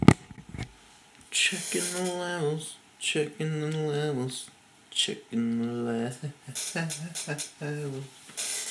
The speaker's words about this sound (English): Checking the levels. Yeah, it's a fucking chair, man. You can hear that fucking chair, man.